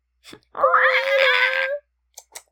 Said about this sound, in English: C just came in here. Oh, she is. C, see. Oh no. We have a lot of angry cat sounds on the podcast today.